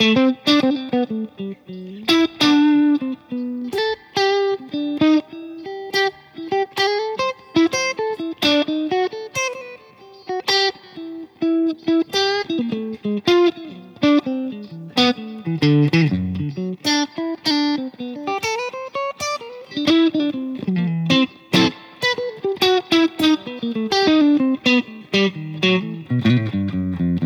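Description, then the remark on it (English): A solo electric guitar plays a fast, unaccompanied melodic lick in B7 melodic minor with a slightly distorted, effected tone, notes picked crisply in quick runs and bends, fairly loud with no other instruments. “So that last one was a B7 melodic minor.”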